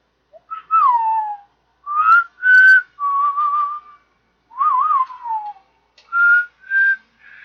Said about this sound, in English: The man who raised whistling to an art form. Yeah, he took the sound of a coyote from the opening scene of the movie and decided to make an entire theme out of that, and it became one of the most recognizable themes in the world.